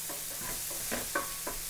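A steady sizzling hiss of food frying in a nonstick pan on full heat, broken by a few soft scraping stirs of a utensil. No one speaks.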